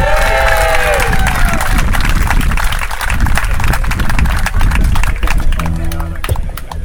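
A crowd bursts into sustained, loud applause and cheering, with dense clapping throughout and a few shrill whistles or whoops rising over the noise at the start.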